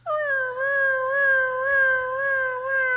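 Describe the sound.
A person imitates a siren with one sustained, high vocal wail that holds a fairly steady pitch with slight wavering for about three seconds. It is loud and clear, with no talking over it.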